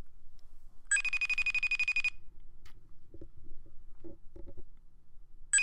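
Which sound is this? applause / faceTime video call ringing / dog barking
faceTime video call ringing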